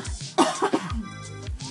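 cough

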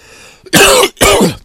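cough

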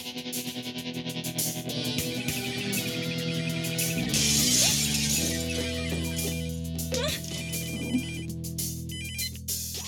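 telephone ringing

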